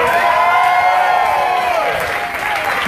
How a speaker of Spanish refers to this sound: Yo creí que se iban a parar, yo creí que iban a gritar. Un grito de victoria,